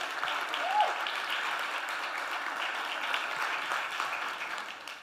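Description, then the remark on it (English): A crowd applauds steadily for about five seconds for a group of young adults who come almost every Friday night to pray, a dense wash of many hands clapping at an even loudness, with a brief cheer or whistle near the start before the clapping tapers off. “And so it's amazing that these people, can we give those guys a round of applause?”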